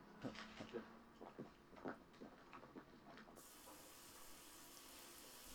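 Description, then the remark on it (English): A shower runs with a steady, soft hiss of spraying water in a film scene with Clint Eastwood in the shower holding a gun. A few splashes and knocks come early on, then the spray turns brighter and fuller for the rest. “So Clint Eastwood's currently now in the shower with a gun again.”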